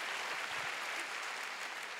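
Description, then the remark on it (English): Steady applause from a large audience at City Harvest Church, clapping for the Lord: a dense, continuous wash of many hands clapping at an even level throughout, with no voices standing out. “Oh, come on, let's give the Lord a big clap.”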